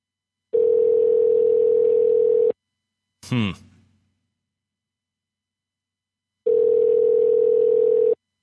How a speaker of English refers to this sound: Calling the winner right now. Stand by. Stand by. Please pick up the phone.